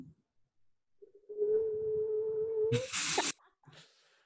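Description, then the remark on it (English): A voice imitates a train horn with the tongue: a steady, sustained mid-pitched tone lasting about two seconds, ending in a loud hissy, breathy burst, followed by a faint breath. “I can't whistle, but I can do this weird like train horn with my tongue.”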